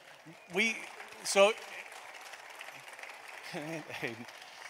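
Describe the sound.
A church audience claps steadily for its elders as they come up to join the pastor at the table, a continuous wash of applause with a few voices calling out and cheering over it now and then, moderately loud throughout.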